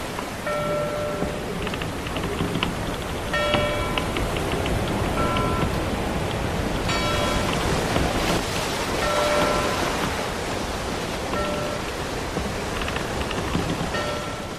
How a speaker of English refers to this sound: The bell means that the Argus Sea has sailed into port, and we've got a couple of questions.